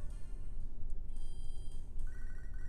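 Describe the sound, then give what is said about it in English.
The Pokégear phone in a Pokémon video game rings with a bright electronic tone for a call from Professor Elm, short synthetic beeps repeating over a steady low background hum, with no one speaking. “My Pokégear is ringing.”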